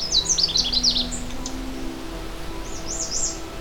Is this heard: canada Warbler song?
yes